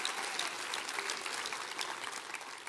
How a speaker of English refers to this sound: Come on, clap your hands real big and rejoice in that.